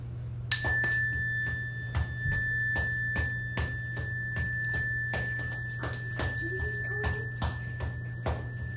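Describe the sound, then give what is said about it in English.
A chime is struck once during a calm listening and yoga practice with a group, ringing out a bright, high, steady tone that lingers and slowly fades over several seconds, while faint scattered taps and a low background hum continue beneath it. “We're sitting calmly and comfortably, and we're going to listen to the chime.”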